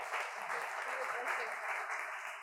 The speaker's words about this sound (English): Why don't we clap for our Jews and Gentiles?